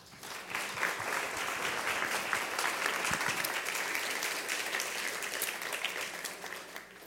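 A crowd applauds steadily for about seven seconds, welcoming a speaker at a tea party event. It is a dense, sustained wash of many hands clapping at an even loudness that tapers slightly at the end.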